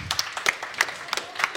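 A short burst of applause from a small group, with quick, irregular crisp claps blending into a steady patter at moderate volume, with no talking.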